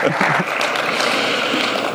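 A crowd applauds steadily, a dense wash of many hands clapping close and fairly loud for the full two seconds, with a faint voice briefly audible underneath at the start.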